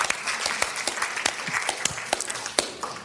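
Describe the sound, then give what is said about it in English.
A church audience applauds visiting guests steadily, many hands clapping in a dense, continuous patter that stays fairly loud for the whole stretch, with no voices standing out. “can you just applaud them?”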